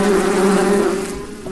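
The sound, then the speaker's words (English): A steady, loud buzzing of bees in a video game drones continuously with a sustained hum, fading slightly toward the end; no voices are heard. “You killed him, not the bees.”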